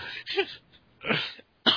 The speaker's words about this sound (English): you made me cough.